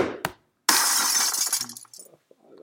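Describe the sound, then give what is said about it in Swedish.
A newly bought phone is thrown straight at the ground and smashes with a sharp crash and bright shattering glass that rattles and scatters for about a second, following a brief scuffing thud, then a few faint clinks settle. “Jag har köpt en ny telefon, vet du. Vad är det första jag gjorde? Släng den rakt i backen.”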